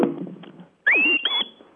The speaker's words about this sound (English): Then, and what's another whistle then? The go right command.